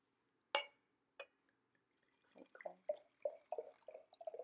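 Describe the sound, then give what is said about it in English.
Two light glass clinks, then Kendall Jackson Vintner's Reserve Chardonnay, a 2017 white wine, glugs from an already opened bottle into a glass in a steady run of gurgling pulses, fairly quiet, with no talking. “So we'll pour this out.”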